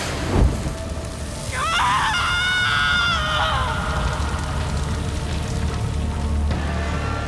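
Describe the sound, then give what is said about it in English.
A woman's high, wavering scream rises sharply and holds for about two seconds, then fades, over a steady backdrop of rain and low rumbling thunder. “Morgana couldn't tell if her sister's screams were from the pain of the flames or her lost child”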